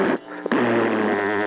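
fart noise

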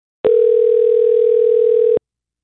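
telephone call ringing out

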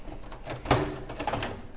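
microwave door opening

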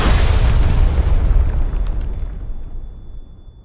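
bomb explosion

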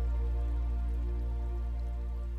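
rain falling

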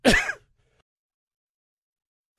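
cough

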